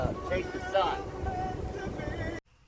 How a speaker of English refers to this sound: that was me and my buddy Isaiah on his Tartan 37. It's a great boat and a great fun time out there on the bay